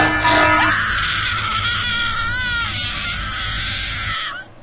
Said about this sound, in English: Who did the scream? It was canned.